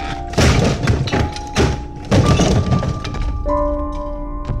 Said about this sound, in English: That was when the front door was smashed open.